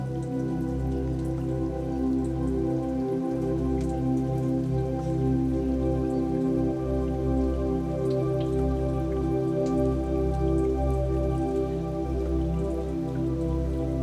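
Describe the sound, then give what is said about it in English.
Steady raindrops patter continuously for the whole stretch, a soft even shower with scattered brighter drips, layered over a low sustained hum. No one speaks. “let yourself receive the words you hear from inside of you, and let them shower you with love, just like the raindrops.”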